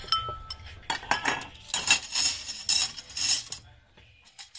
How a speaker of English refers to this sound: Now, go and get ready. I will clear away the dishes. You have been doing so much.